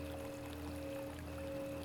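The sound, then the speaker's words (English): A steady, continuous wash of flowing water from the river Gion, with a low sustained hum beneath it and no voices. “You walk down this path and hear sounds of the water.”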